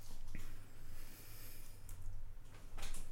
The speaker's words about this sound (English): why don't you start us off with a little bit of a sniff? All right, here we go.